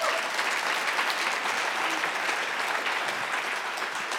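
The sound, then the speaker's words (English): An audience at a morning church service applauds steadily, a dense, even wash of many hands clapping at a constant loudness with no voices standing out, sustained for several seconds. “You guys clapped, and then you saw that first line.”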